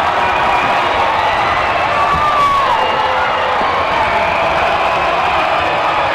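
A packed basketball arena erupts in loud, sustained cheering and shouting after a slam dunk by Eric Patton, a dense roar of crowd noise with whoops rising throughout, filling the space without pause.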